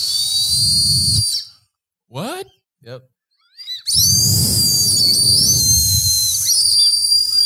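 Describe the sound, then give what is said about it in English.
A shrill, steady whistle blown through a snack, sounding in two long stretches with a breathy rush underneath, split by a short pause where voices briefly speak. “Oh, I know why you can whistle, because you put it in probably in the”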